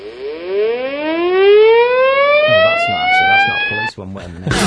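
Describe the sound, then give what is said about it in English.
A loud siren sound effect winds up in one long, steadily rising wail with strong harmonics, cutting off abruptly near the end as voices begin talking over its final seconds. “That's all I hear out of my window.”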